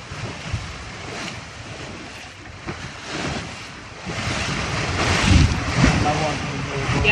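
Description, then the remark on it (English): A motorboat races across choppy harbour water, wind roaring across the microphone as hulls slap the waves over a low engine rumble, growing louder and rougher toward the end. “I've had a few people say, you know, you must have had some good rides today, because we were zooming around the harbour.”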